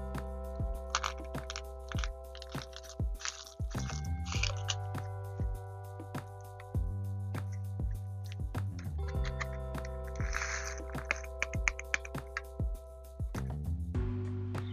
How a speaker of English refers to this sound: I guess these are the pastry pieces. They have like little erasers or Tic Tacs or something, and then little crumbles. So let's see how this goes. Again, we have the yogurt water, which is kind of gross, but whatever, we're about to mix it all in.